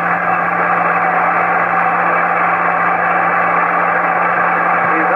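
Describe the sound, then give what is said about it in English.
A stadium crowd at an American football game roars and cheers as quarterback Hadle gets back on his feet without using the stretcher. The noise is a steady, unbroken wash heard through a thin, muffled broadcast-quality channel with a low, constant hum beneath it. “And listen to that crowd.”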